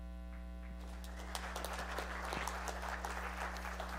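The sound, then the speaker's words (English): A church audience applauds steadily as the pastor walks up: many hands clapping in a dense, crackling wash that swells after the first second over a constant low electrical hum, with no voices. “I said to the first service, I don't know why it is that you clap while I walk up or any of us walk up, but we appreciate it.”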